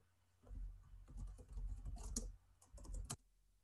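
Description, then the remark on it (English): A man types on a computer keyboard: rapid, uneven, fairly loud clatter of keys in bursts with brief pauses and no voices. “It's you typing.”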